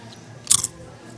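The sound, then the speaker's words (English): A single sharp crunch of someone biting into a crispy chip from Mi Tierra, lasting a fraction of a second against a quiet background with no talking. “Don't be fucking chewing your damn shit on me.”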